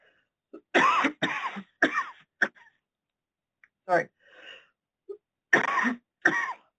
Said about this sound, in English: Sorry. It's a talking cough, not a COVID cough.